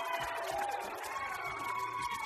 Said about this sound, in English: But we have this group in front of us cheering, and then there's people down the sidelines here on our football field, and nobody's cheering over there.